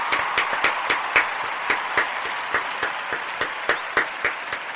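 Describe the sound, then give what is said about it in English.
A long, sustained round of applause congratulating the winner of a tiebreak: sharp, evenly spaced claps ring out over a dense, continuous patter of clapping at a steady moderate level, with no talking. “It's a long applause.”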